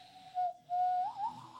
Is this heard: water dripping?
no